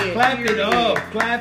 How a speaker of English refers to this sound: Clap it up.